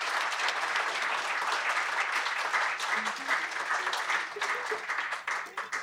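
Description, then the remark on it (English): Sustained audience applause at a music camp, for everybody up on the stage, fills the whole stretch, a dense, steady clatter of many hands clapping at an even loudness with no speech over it. “And I think everybody here should just give a great big round of applause to everybody up on the stage.”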